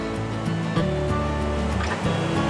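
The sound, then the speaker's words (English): Waves of Lake Superior wash steadily against the shore in a continuous rushing roar with low rumbling underneath, fairly loud and with no voices, as a breeze blows off the water during a hike along the shore. “There's quite a bit of a breeze coming off the coast, so you'll be hearing a lot of waves as we hike along the shore here.”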